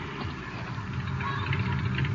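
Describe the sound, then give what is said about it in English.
A car engine rumbles steadily at a low, idling pitch, growing slightly louder toward the end as the car approaches. No one speaks over it. “There's a car coming.”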